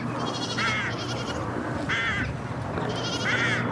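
Several young goats bleat in quick succession, three loud wavering calls spaced across a few seconds, over a steady outdoor background hum with no talking.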